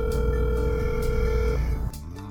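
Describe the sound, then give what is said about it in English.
A steady electronic telephone tone rings continuously for about a second and a half, fairly loud, for a phone call to a woman, then cuts off and a brief pause of background noise follows. “See a phone call and text messages between woman and her online lover, quote, stuck in South Africa.”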